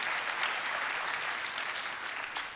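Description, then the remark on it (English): A church audience applauds teachers steadily, a dense, even wash of many hands clapping at a sustained moderate level for the whole stretch, with no voices standing out. “Listen, if you knew my relationship with teachers growing up, you would never think I would ever clap one of them, okay?”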